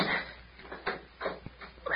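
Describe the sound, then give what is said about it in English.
A few dull knocks and thuds, then a short sharp click as a cabin door is closed and locked. The muffled sounds come in a loose, uneven sequence. “Well, first climb up and close the cabin door and lock it.”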